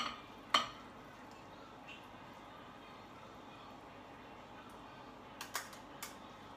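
A sharp clink of utensils against a dish, then a few lighter scrapes and taps as chicken and noodles are served onto a plate, over a steady low hiss of background noise.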